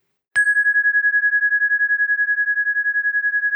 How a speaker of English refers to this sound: If we were a different kind of podcast, we would have a flourish of trumpets just now. But I don't have trumpets. I have a chime, which I tend to think is friendlier on your ears.